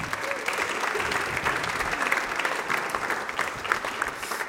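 An audience applauds steadily for several seconds to welcome a guest to the stage for a conversation, a dense, even wash of many hands clapping at a fairly loud, constant level with no voices standing out.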